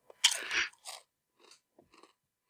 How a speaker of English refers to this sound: Has a good crunch. Mm-hmm. It's like, all right. It's crunchy. It's chippy.